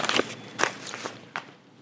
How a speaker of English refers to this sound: He writes, just one second. There's another set of papers which I need to take out. Have I left that paper? Yes, here it is.